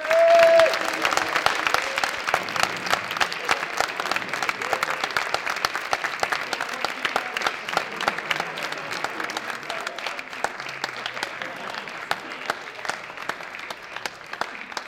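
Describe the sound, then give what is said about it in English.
A large audience claps steadily to welcome the night's host, Hugh Ferris, a dense, continuous wash of many hands that stays loud throughout and tapers only slightly toward the end, with a brief whistle near the start. “So if we could have a massive round of applause, please, for Hugh Ferris of Set Piece Menu.”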